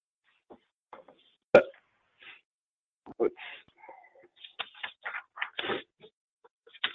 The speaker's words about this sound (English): And I apologize, I had to clear my throat here.